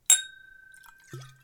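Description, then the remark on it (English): A single sharp, bright clink of a long-stemmed Glencairn whisky glass, followed by a clear ringing tone that hangs on and slowly fades, with a soft low thud near the end. “This particular Glencairn is clinging and dinging like crazy.”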